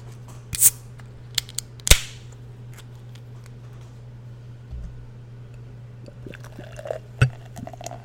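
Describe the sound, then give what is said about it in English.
A can of blonde beer cracks open with a sharp snap and a brief hiss, followed by faint clicks and soft liquid sounds as the clear beer is poured, over a steady low hum, with no talking. “Let me pop this bad boy open and see what a nice blonde tastes like.”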